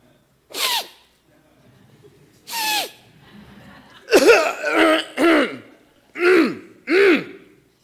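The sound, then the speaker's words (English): A person mimics a coworker in the next cubicle who has a cold: two sharp, hissy sniffles, then a rapid run of four gravelly throat-clearing grunts, all loud, with no talking. “Or how about that person that works next to you, that coworker that sits in the cubicle next to you, and you value your silence and getting your work done, and they have the sniffles.”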